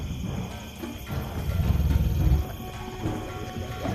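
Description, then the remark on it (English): Deep, rumbling growls and snarls from two large wolves roll on without a break, swelling to a louder, throatier peak midway before easing back to a steady menacing rumble. No one speaks. “And you just see this wolf grab him almost by the neck with its teeth and just start flinging him around, and he hurls him through the air into the fog, leaving you, Johan, staring down these two large wolves.”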